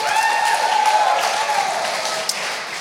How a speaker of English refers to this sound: You guys can give him a big round of applause.